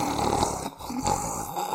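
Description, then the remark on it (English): A person snores, a rough, rattling breath that briefly pauses and then rumbles on again, with no talking over it. “This is the most that you have ever spoken without snoring.”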